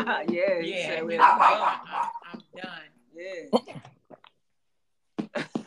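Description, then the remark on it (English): A dog barks repeatedly in short, loud bursts, overlapping with people talking, then falls quiet before a few more sharp barks at the end. “So your dog is signing us off. He said that's enough.”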